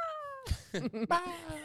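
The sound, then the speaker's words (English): A person imitates the scream of a catman with a long, wailing, cat-like yowl that slides downward, then breaks into a few choppy vocal bursts and ends with another drawn-out cry, loud. “It's like, like you stepped on his tail.”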